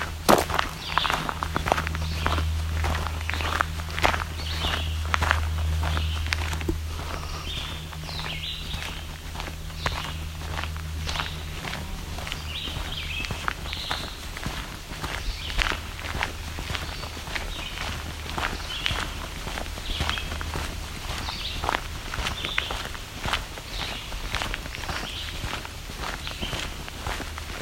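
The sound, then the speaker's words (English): Barn swallows give short, scattered chirping calls overhead, fairly faint, over a steady crunch of footsteps and a low background rumble. “You can also hear some barn swallows overhead. Just calls, not the song.”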